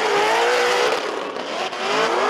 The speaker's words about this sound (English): I hate Corvettes, but he's the only one Corvette I like. It puts on a sound, actually.